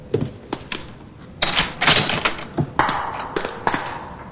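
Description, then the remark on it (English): Hurried footsteps clatter down a flight of stairs, a quick, uneven run of sharp knocks and thumps with no voices. “I ran down the stairs. To here.”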